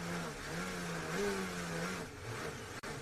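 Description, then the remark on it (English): A Formula 1 car engine, heard in onboard audio during a race, drones loudly and steadily, then its pitch sags and falters in the final second as the engine dies, with no voices present. “You can hear in the audio his car dying on the onboard and then him coming over and just being so sad.”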